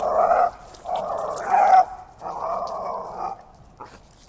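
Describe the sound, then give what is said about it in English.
A small dog, trying to play with much bigger dogs during a walk, lets out three drawn-out, whiny barks in quick succession, clear, with a brief yip at the end and no talking. “is trying to play with much bigger dogs, which he's not allowed to do.”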